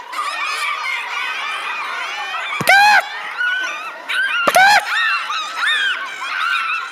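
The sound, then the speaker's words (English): An audience, asked to give their best chicken, imitates chickens and turkeys at once: a dense overlapping chorus of clucks, squawks and gobbles, punctuated by two louder shrill squawks, with scattered laughter mixed in. “Can everybody give me your best chicken right now?”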